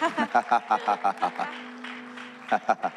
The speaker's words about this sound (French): Yeah, if you're gonna clap for Jesus, well, give him a decent clap at least.